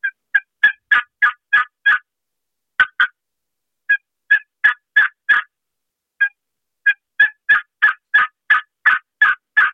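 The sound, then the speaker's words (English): A turkey call run slowly at a proper turkey rhythm: loud yelping notes in evenly spaced runs separated by short pauses, with no talking. The yelps are a human-made imitation of a turkey. “Slow that call down to a proper turkey rhythm like this. This is the same call I just ran.”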